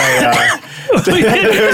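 A man coughs in a couple of harsh, throaty, loud bursts, with a short pause between them and some voiced, strained sound around the coughs.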